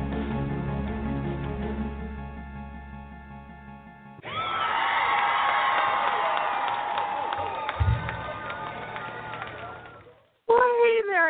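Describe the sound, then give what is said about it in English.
A short stretch of tonal music gives way to a loud, dense sound effect of crowd cheering, whooping and clapping, played as a show's host is introduced, that carries on for about six seconds, then cuts off abruptly before a voice begins. “Up when I hear all the applause.”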